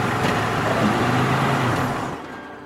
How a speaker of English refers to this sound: In the distance came the dim light of a 24-hour petrol station. I flipped on my indicator, and I pulled into the station beside one of the pumps.